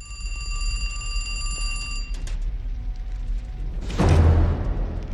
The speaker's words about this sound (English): But he then hears a phone ringing.